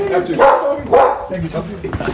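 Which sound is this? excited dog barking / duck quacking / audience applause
excited dog barking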